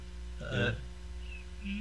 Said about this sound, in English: It's like a whining sound. Air conditioner. It's like you got two wires crossed. No, it's the air conditioner outside.